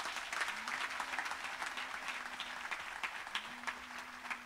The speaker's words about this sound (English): Clap your hands to the Lord, somebody.